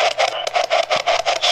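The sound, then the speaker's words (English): A spirit box sweeps through radio static in quick, choppy bursts, about eight pulses of hiss in a steady rhythm over a faint constant tone and low hum, with no voices. “It's filtering through all these radio waves that it said demons and spirits are supposed to be able to talk through.”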